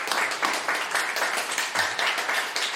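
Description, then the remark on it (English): Audience applause: a dense, steady wash of many hands clapping at once, fairly loud and sustained throughout with no voices rising above it. “Round of applause for yourselves and for Ed for doing the podcast.”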